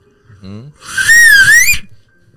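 A brief vocal sound, then a loud human whistle holding a wavering tone for under a second before cutting off.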